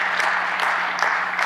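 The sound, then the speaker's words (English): A crowd claps steadily for a man at the back, a dense, even wash of many hands with no pauses, holding a consistent loudness throughout with a faint steady hum underneath. “Look at that guy back there. Give him a big hand.”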